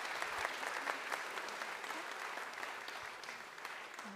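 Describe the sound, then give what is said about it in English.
A crowd claps steadily for a group of helpers at a Christmas gathering, a dense wash of many overlapping hand claps holding an even, moderately loud level throughout, with no voices standing out. “Give these wonderful helpers a big round of clap.”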